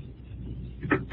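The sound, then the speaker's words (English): A low background rumble, then a door thuds shut, followed a moment later by a short, sharp click as the door is locked. “Oh, I hear you close and lock the door.”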